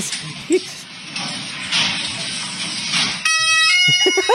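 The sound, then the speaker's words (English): A loud, steady two-tone wail like a British fire truck siren cuts in after a few seconds of hissing noise, holding a bright, buzzing pitch to the end, with no talking. “Oh, it's like a British fire truck.”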